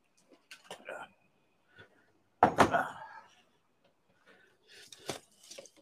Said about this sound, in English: That's one of those doors. That's one of them doors that droops when it opens. So you got to lift up on it to close, and he couldn't do that.